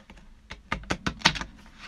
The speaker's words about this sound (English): So it doesn't have to be a perfect shuffle, obviously. The intention is to have pure energy while you do it.